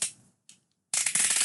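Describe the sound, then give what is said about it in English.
A sharp snap of a craft knife blade breaking off, then a shorter crack, followed by a loud run of rapid, gritty clicking and crackling. No one speaks. “You know you can break these blades.”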